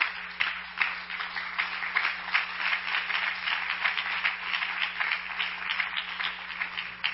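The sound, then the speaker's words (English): A church audience claps their hands to the Lord steadily for several seconds, a dense, continuous patter of many hands with no voices, even in loudness throughout. “If you want to put your Bible down for a minute, let's just clap our hands to the Lord.”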